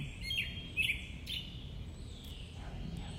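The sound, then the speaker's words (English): Several birds chirp and trill together in a soft morning chorus, their high calls overlapping against a steady low background hum, sounding gentle. “We have a bird chorus this morning.”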